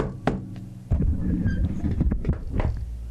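Knuckles rap on someone's head, producing a few dull, muffled thuds with a low, hollow tone, irregularly spaced over a steady low rumble.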